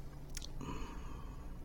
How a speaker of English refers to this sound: got double cheese puff eating action here between the two microphones. Cheese puffs.